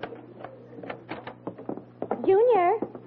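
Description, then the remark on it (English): A front door swings open with a loud, wavering hinge creak lasting about half a second, preceded by soft handling clatter and faint, indistinct voices. “Oh, stop talking so much and open the door.”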